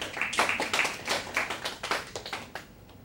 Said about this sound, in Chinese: 哇，太好了，给这个朋友掌声鼓励一下。